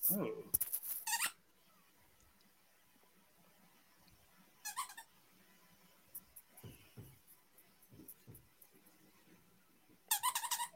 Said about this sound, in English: What is the squeakies? Just squeaky. Yeah, I got my dog down here squeaking.